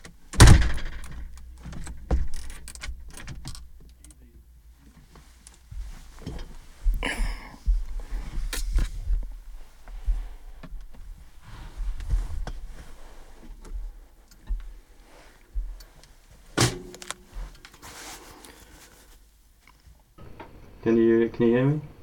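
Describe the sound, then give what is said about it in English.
A faulty door opens and shuts with several sharp clunks and rattles spread out over time, ending in a squeaky, scraping creak, with faint muffled voices in between. “Door's a bit fucked, isn't it?”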